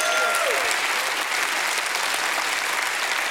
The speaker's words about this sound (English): There's a young man here that's been sober now over 30 some days. He's not worried about just being saved. He's worried about, hey, let me get out of this life and walk with God. Why don't we encourage him and give him a hand clap this morning? Amen.